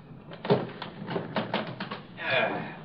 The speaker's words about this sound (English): Now, open the door.